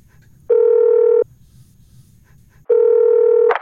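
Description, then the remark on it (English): Telephone tones from an outgoing call to D-Ray at radio station 100.3 The Fox: two loud, steady buzzing rings, each under a second long, separated by a pause of quiet line hum. No voices. “D-Ray on the phone. Oh, he's going to be cranky, because he's busy right now. So let's call him.”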